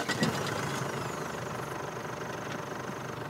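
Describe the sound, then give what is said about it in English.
A car engine idles steadily with a constant low rumble and faint vibration, holding an even level throughout with no voices. “So I split from Ray and John and slide into the back seat of a car with 4 jittery health workers.”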